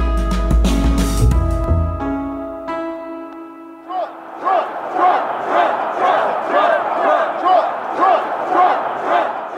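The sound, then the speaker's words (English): A large protest crowd of thousands, just down the road from the US Capitol in Washington, D.C., shouts in loud, rhythmic bursts like a repeated chant, steady for several seconds, following a short musical tone that rings and cuts off. The protesters are convinced Donald Trump won the 2020 presidential election. “I'm standing in a crowd of thousands of people just down the road from the US Capitol in Washington, D.C.”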